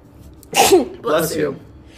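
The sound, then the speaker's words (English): A sudden sneeze, a sharp breathy burst followed by a second shorter explosive snort, loud against a faint background hum. “Bless you.”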